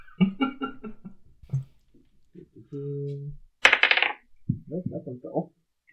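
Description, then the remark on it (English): A brief, bright clatter of dice tumbling across a hard table for perception checks in a tabletop game, a rapid burst of small clicks lasting under a second, with people talking before and after. “Would you guys roll with perception checks again?”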